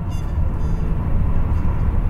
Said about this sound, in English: One thing I remembered about night trains was true. As the train shudders and thumps, it lulls you to sleep. You won't get a better night's rest anywhere else.